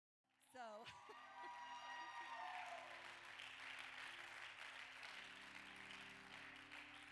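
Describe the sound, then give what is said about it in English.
A church audience claps together in sustained, steady applause for several seconds at a Wednesday night service, with low held keyboard notes sounding underneath after a brief musical swell at the start. “So by that hand clap, I'm assuming that that means that you're going to get behind me tonight.”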